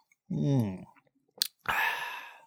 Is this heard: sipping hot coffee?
yes